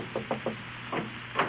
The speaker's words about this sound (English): There's a knock at the door, and his secretary appears.